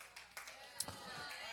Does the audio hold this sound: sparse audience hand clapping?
yes